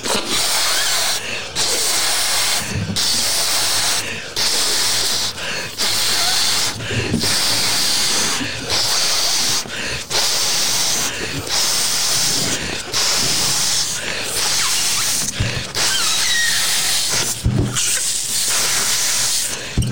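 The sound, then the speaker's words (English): Steady, loud hissing of air blowing into and escaping from balloons, running continuously with brief dips and gaps every second or two, with no talking. “I kept losing that one. I kept losing air on it.”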